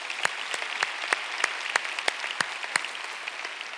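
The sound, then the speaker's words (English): An audience claps steadily, a dense wash of many hands with sharper individual claps popping out at a brisk, fairly even rhythm, applauding people watching from microsites and online. No voices break through. “Let's give all those people out there a big hand.”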